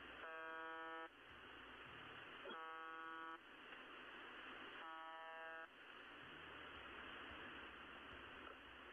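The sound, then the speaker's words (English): Three harsh, droning buzz tones sound at regular intervals, each about a second long, over a constant hiss of shortwave radio static, like a repeating signal from a distant broadcast station. “It emits 25 buzz tones per minute, which is sometimes interrupted by Russian voices that appear to be talking in code.”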